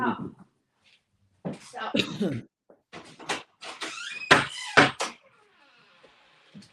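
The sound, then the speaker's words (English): A door is opened with a series of clunks and rattles, followed by a few sharper bangs and some voice-like sounds, then things settle into a faint background hiss. “Somebody opens the door, the dog's barking, the cat's meowing.”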